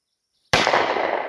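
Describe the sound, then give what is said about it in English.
A single loud gunshot cracks out of silence in a valley outside city limits, its sharp report followed by a long, rumbling decay that fills the rest of the moment. “I question the legality of popping off shots in this location.”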